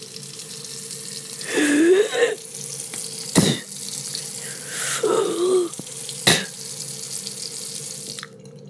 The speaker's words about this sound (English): And then what you do, you wash your mouth out. And you get the water and then put the water in your mouth.